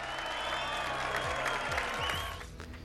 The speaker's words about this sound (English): And the Crowd Goes Wild emote for 200.